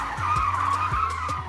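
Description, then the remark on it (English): Car tires screech in one sustained, high-pitched squeal that wavers slightly as the car nearly crashes into a curb, with a low engine rumble pulsing underneath. Loud and steady throughout, with no voices. “I guess I said something I wasn't supposed to say because Patty almost crashed us into a damn curb.”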